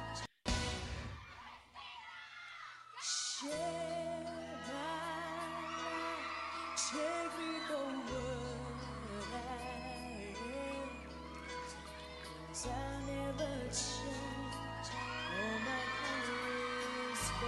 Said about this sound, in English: Who mixed this sound and put all those screams in there? It's annoying. The screams could have been a little lower in the mix. Yeah. They didn't have our technology back then. A fader? They didn't have a fader and a board?